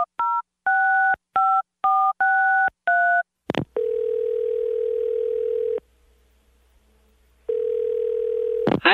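A quick run of touch-tone dialing beeps, about seven in a row, followed by the steady ringback of a phone ringing twice on the line, with a pause between rings, as someone phones a girlfriend.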